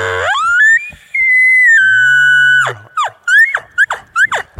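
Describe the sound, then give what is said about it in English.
A bull elk bugle imitated on a diaphragm call: a low growl climbs into a long, loud, high whistle, followed by a quick series of short, sharply falling chirps. “and that gives you that low end of a bull bugle”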